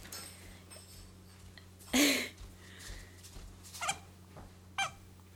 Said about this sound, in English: Sorry, our dogs are on another level today.